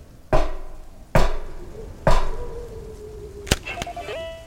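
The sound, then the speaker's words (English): A secret knock: three loud, evenly spaced knocks on a wall in a concrete drainage ditch, each with a short ringing decay, followed by two sharp clicks and a brief rising tone. No one speaks. “Okay, now step up to this wall and I will give the secret knock.”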